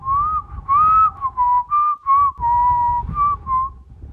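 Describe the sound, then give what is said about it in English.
A person whistles a quick, bouncy tarantella melody in short phrases, the tone clear, with a low rumble of background noise underneath and no talking. “started whistling a tarantella, acting as if no one should be scared by these sounds.”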